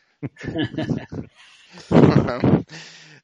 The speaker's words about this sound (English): Maybe we have that one listener that's like, oh my God, breathing, yes. Who the hell is that? It's possible. Who's that bull-sounding asshole in the background? Sounds like he's ready to just charge.